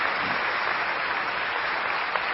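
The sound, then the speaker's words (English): A crowd applauds steadily for a couple's 46th wedding anniversary, a dense wash of many hands clapping at once with no pauses, fairly loud and sustained throughout, with no voices standing out. “and we should give them a great round of applause.”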